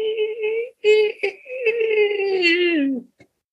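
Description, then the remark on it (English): A voice imitates a pathetic, shrill screech: a few whiny bursts followed by a long, strained wail that slowly sinks in pitch before cutting off, then a tiny click. “It's like a pathetic screech, like a pathetic, you know, shrill screech, and like.”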